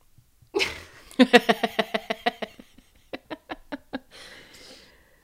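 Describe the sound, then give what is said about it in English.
A dog snoring and snorting: a quick series of about a dozen rhythmic, nasal pulses, a short pause, then several more, ending in a breathy huff. No one speaks. “I can definitely hear your dog. Are you snoring?”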